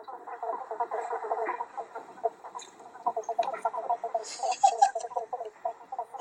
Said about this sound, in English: So basically they're these little frogs, and they're named bubble bonks because they make this little sound that goes bonk, bonk, bonk.